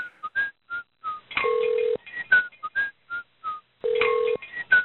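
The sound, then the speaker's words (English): A looped collage of chopped samples of call-center phone-call recordings, all thin telephone-band sound: chirpy whistle-like blips and clicks around a steady held tone, the pattern repeating roughly every two and a half seconds, made with an audio editor on a work computer. “other reps started giving me their weird phone calls, and I'd mix them together.”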